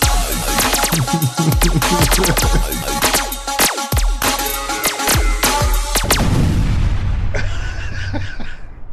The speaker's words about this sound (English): Just silence or explosions? No, explosions. Blow it up. Explosions, blow your head up.